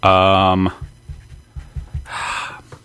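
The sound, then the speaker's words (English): A brief papery rustle near the end follows a voiced sound and a few soft low knocks, like a sheet of paper being handled to write on, fairly quiet overall. “Let me just get a little sheet of paper going.”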